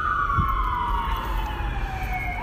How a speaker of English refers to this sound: Sorry, hold on, the sirens. New York is great, but it's fucking noisy.